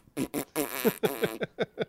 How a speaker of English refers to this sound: Put some fart noises on.